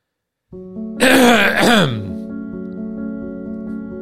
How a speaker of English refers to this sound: So the only way to get rid of it is to occasionally mute. So if you hear little pauses, you know, I can always like play some music while I just clear my throat like this.